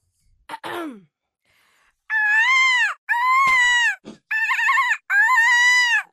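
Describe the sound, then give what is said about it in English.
A person imitates the noise of a sheep squatch, with a brief falling squeal followed by four wavering, nasal bleats, each about a second long, loud and separated by short pauses. No speech. “Two bleats and then a little bit of the thing.”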